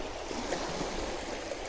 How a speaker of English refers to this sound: The small waves are breaking over the rocks here.